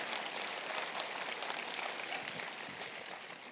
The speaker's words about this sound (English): Come on, give that a round of applause.